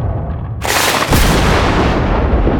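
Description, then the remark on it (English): A sudden, sharp thunderclap bursts out after a low rumble, cracks again a moment later, then rolls on as a loud, sustained roar with no one speaking. “That sounded like a thunderclap.”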